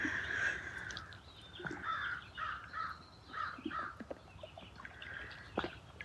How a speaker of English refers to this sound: The song of the birds, the music of the water.